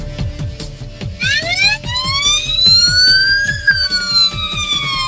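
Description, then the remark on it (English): An ambulance siren wails in as the ambulance pulls in, its tone sweeping upward and holding loud over a steady, thumping rhythmic beat. No one speaks. “As you can tell, the ambulance is pulling in.”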